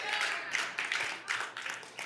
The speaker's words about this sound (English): See how those claps are getting softer?